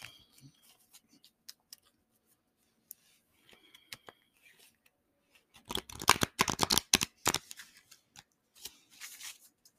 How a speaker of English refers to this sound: I got baby in hand cards in the other. But I'm still going to shuffle.